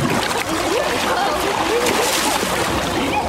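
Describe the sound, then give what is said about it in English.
Loud splashing and churning water that stays steady for a few seconds as a person dives back into a swimming pool and thrashes about, with faint voices mixed in underneath. “I'm going to give it another go and dive back in.”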